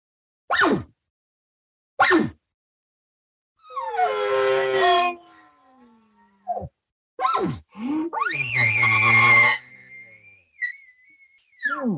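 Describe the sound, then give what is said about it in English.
Elk bugle calls, loud: a few sharp chirps, then a raspy rising whine, then a harsh scream that climbs into a long, high, wavering whistle. No talking. “There's none of this little bugle and then don't say nothing till noon.”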